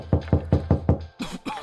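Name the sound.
knocking on a door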